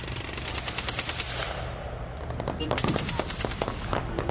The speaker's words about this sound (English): it wasn't the sound of drills ringing in Michael Martin's ears, but the sound of gunfire